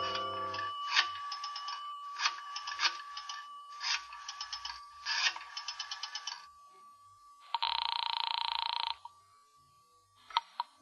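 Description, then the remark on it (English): A telephone bell rings in four rapid trilling bursts over a faint steady hum, followed by a longer harsh buzzing tone and a couple of sharp clicks, with no voices, as a call is placed from a phone booth at the rear of a residential hotel lobby. “I decided I'd try calling her again.”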